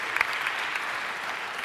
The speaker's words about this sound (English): Yeah, come on up. You're in my neighborhood. You're my people. See, I love people from my neighborhood. Get up here. Yeah, clap for them while they're getting up here. These are my people.